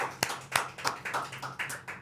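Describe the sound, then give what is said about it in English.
A small group of people in a studio clapping, with uneven, overlapping claps at moderate loudness over about two seconds. A low, steady hum runs underneath, and no one speaks. “Everybody in the studio, let's clap it up for real quick before I say what I'm about to say.”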